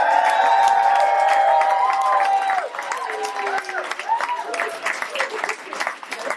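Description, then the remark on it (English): A crowd bursts into applause with cheers and whoops, loud and steady at first, then fading into scattered clapping and excited voices. “And one of the people from that threesome is sitting right next to me, so applause for her!”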